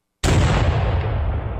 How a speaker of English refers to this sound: But the Corps of Discovery's cannons might have scared me silent, and it was probably what did it for them, too.